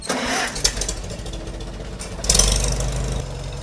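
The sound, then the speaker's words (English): A Farmall M tractor engine in Iowa runs with a steady low rumble and mechanical clatter, surging louder partway through as it revs, continuous. “The M farm all there, we bought it in 1980.”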